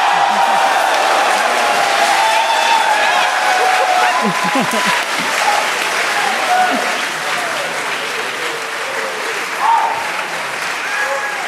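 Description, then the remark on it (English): Loud, sustained audience applause for Facebook fills the whole stretch, a dense steady roar of clapping with some scattered voices and cheers mixed in, holding at a constant level throughout. “Legitimately the most applause Facebook has received in a yes.”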